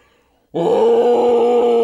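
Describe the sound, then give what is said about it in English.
After a short silence, a voice lets out a loud, sustained roar imitating King Kong, the giant ape: a steady, throaty growl with strong low harmonics held for over a second. “That is what King Kong sounds like. King Kong is a giant ape.”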